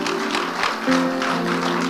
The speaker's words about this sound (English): So we thank God for Flaming Altars 2022. Amen. I thought you are clapping for Flaming Altars 2022.